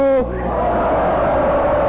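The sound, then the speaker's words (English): At a poetry performance, a brief shouted vocal note is quickly swallowed by a loud, sustained roar of the audience yelling "ho!" together, a dense wall of crowd voices that stays steady for the rest of the moment. “I want to hear a poem that makes this audience yell, ho!”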